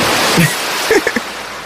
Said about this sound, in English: Yo, this tub got water in it or it's empty? It's. I got a little There's splash. A lot of I got a little splash on it.